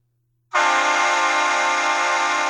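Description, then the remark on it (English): A Shocker S6 air horn blares loudly and suddenly after a moment of silence and holds one steady, brassy chord-like blast for about two seconds without letting up. “Ooh, the Shocker S6.”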